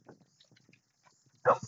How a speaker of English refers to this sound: I'm taking a little quick walk. I'm walking the dog, the little sweetheart here.